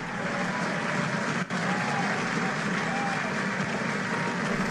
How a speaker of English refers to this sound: Great question. Let me give him a hand clap.